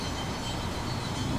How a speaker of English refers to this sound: Yeah, there it is. Hard to say behind the trees, but there you go. It sounded beautiful. Yeah. So. Trains.